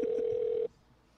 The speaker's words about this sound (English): Such suspenseful dialing right here.